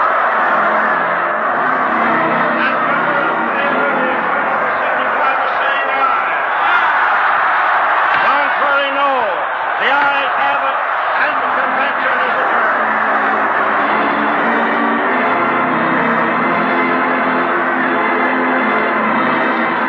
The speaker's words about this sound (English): Indiscriminate roar from the crowd.